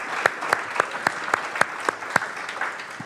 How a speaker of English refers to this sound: Let's applaud Jesus. Let's applaud Jesus.